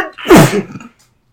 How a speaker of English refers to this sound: bless you. Sorry.